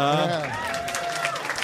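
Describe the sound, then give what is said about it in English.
A crowd cheers and whoops loudly, a burst of many voices with clapping mixed in, holding at a steady level for under two seconds. “Wait, you're cheering because Kevin's sick, right?”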